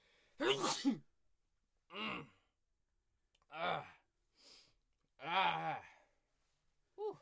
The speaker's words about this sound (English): I got to sneeze.